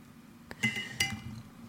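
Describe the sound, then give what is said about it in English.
Two quick, bright clinks of a water bottle cap, the second following shortly after the first, each with a brief high-pitched ring over a low background hum. No one speaks. “No, it's the cap of my water bottle.”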